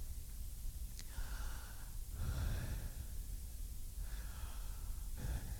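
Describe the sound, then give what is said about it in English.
Slow, deep breaths drawn in and let out, each airy rush rising and fading in a steady rhythm over several cycles, with no talking. “And how our breath, every time we breathe, we're actually unaware that we're repeating the unpronounceable name of God.”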